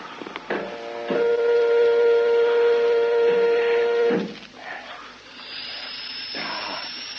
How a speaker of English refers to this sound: You hear that, Mac? The air's coming in. Oh, good.